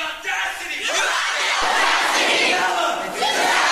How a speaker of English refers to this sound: So they're doing this thing where one person says it and the crowd chants it. Right, right. It's like a call and response.